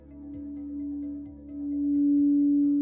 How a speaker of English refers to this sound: The melodies of the singing bowls and the vibrations of the gong echo through the halls of the Ohm Center on the Upper East Side of Manhattan, where I tried a sound bath for the first time.